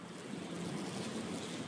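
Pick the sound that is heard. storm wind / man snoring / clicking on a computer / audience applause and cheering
storm wind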